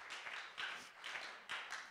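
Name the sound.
audience round of applause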